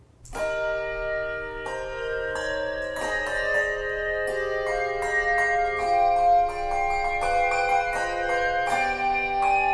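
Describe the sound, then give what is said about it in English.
Handbells ring out an ornamented chorale melody, with hand chimes doubling the plain chorale tune underneath; bright, overlapping tones strike in steady succession and ring on, fairly loud, with no voices. “But also, you know, in the recording we do, I double the chorale melody on hand chimes. That's there at the same time as the bells are playing the ornamental version.”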